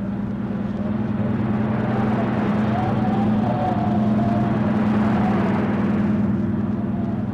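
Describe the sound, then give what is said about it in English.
A steady, loud motorboat engine drone with strong low harmonics runs continuously throughout, opened up to full throttle on a rough sea as it gets dark, with a faint whine rising and falling above it and no talking. “He can't handle that boat, not in that sea. We go after him? We'll have to. Okay. She's getting dark, Hug. Open her up.”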